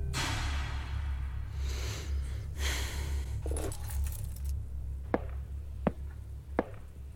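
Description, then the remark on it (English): Car keys for a Toyota are picked up and jangle in several bright, rustling bursts over a steady low hum, followed by three sharp, evenly spaced clicks. No one speaks. “Either walk out of here right now, or pick up the keys, go out back, and get in the Toyota.”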